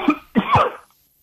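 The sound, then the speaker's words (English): A man coughs twice in quick succession, the second cough harsher and longer, then quiet. “so wonderful you hear him coughing around there, and I really appreciate him giving us some time.”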